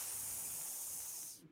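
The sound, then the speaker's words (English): A cobra's long, steady hiss, loud, holding its breathy sharpness for over a second before cutting off abruptly; the snake is a pet cobra named Cobra. No talking alongside it. “What do you think, Cobra? Should they come?”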